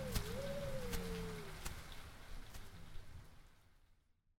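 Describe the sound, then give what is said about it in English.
Heavy rain drums steadily on the taut roof of a command tent, a dense hiss broken by sharper scattered hits, with a faint wavering tone early on before the downpour fades away. “Rain pummels the roof of the command tent.”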